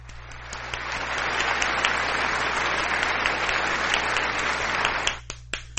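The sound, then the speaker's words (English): A crowd applauds steadily for about five seconds, a dense wash of clapping that then fades out into a few last scattered claps. “I'll wait another applause.”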